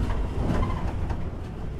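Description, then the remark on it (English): A train rushes at speed through the Southern Railway station at Surbiton, giving a steady rumbling roar with a deep low-end drone and faint rattling, continuous throughout with no voices. “and pass through the magnificent Southern Railway station at Surbiton at speed.”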